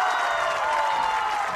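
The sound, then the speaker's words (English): A football crowd in Bedford cheers and applauds after a Bedford Bulldogs touchdown, a dense, steady roar that stays loud and even for the whole brief moment, with no single voice standing out. “That'll get the crowd going here in Bedford.”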